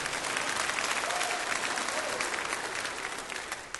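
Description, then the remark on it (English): A crowd applauds steadily, a dense wash of many hands clapping at once that holds fairly loud for a few seconds before starting to taper off near the end. “You can clap if you want.”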